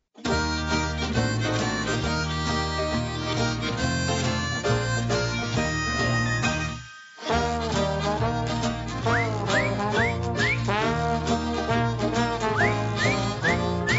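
An instrumental jug band intro plays, full and steady, with strummed strings and bouncy bass, a brief break midway, then sliding, swooping lead notes over the rhythm. No voices.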